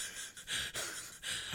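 A run of rough, breathy coughs, three or four hoarse bursts in quick succession with raspy inhales between them, fairly quiet and with no one talking.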